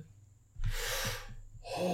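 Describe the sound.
A voice makes exaggerated, heavy breathing: a loud, broad gasping inhale, a brief pause, then another forceful breath starting up, with no talking.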